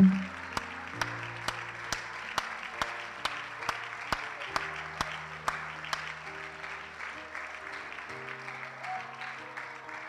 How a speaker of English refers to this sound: Come on, let's clap our hands unto the Lord. Amen. One more time.